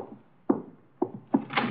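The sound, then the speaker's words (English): Three firm knocks on Mr. Wolfe's door as guests arrive, unevenly spaced, the last followed by a brief rustling clatter. No one speaks. “Archie, the door, our guests are arriving.”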